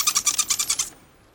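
A porpoise call: a quick run of about eight high, squeaky chattering pulses in under a second, fairly loud and alone, then it cuts off into near silence.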